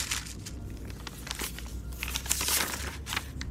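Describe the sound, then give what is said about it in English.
Continuous crinkling and rustling of a paper note in a jacket pocket inside a car, with irregular crackly bursts as it is pulled out and unfolded, over a low steady background hum; no voices. “I was about to get out of my car when I heard the paper crumple in my jacket pocket.”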